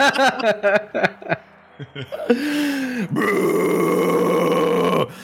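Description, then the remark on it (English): A few quick grunting, chuckling bursts lead into a person's loud, sustained roaring yell imitating a dragon turning its attention to a ship, held for about three seconds with a brief break partway through, more of a Tarzan-like holler. “I want to roar back. You sound like Tarzan, not a dragon.”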